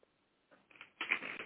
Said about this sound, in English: I was through my notebook trying to find a clean piece of paper to take some notes on.